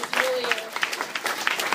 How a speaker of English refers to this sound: I promise you're clapping for good reason. You're wonderful.